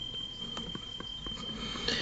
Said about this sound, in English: Sorry to break kayfabe here, but there are fire alarms going off in my house right now.